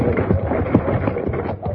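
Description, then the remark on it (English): Hooves clip-clop in a quick, steady rhythm over a low rumbling background as a man drives off down the street with a team of horses pulling a wagon. No one speaks. “No, it's out there on the boardwalk, and a man is driving off with our horses and wagon.”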